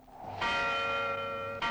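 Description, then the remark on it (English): A church bell rings loudly out over a silent, deserted village, one strike humming with a long sustained tone before a second strike rings out at the end, with no voices. “The bell rings out over the village, an ominously silent, utterly deserted village.”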